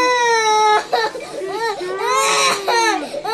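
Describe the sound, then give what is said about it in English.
An adult voice imitates a boy crying while held down by four people during a teeth cleaning: loud, high, wavering wails broken by a short gasp, then another drawn-out sobbing wail rising and falling in pitch. “And this is what he sounds like when he's got it's not even a drill.”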